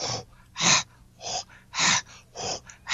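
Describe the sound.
A person imitates a dog's laugh to get the interest of dogs, with rhythmic, breathy pants made with an open mouth and slightly rounded lips, about seven airy huffs in a steady in-out pattern, with no words spoken.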